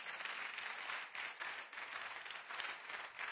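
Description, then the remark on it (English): A church audience claps together as a hand clap offering to God during a sermon, in sustained, dense applause, many hands overlapping into a steady crackling roar with slight swells, and no voices heard over it. “Give God a hand clap offering because that is who you are.”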